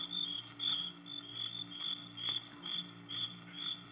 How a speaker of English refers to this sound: We stood and listened. But there wasn't a sound except the crickets. Shrilling so loudly, the noise seemed to beat inside my brain.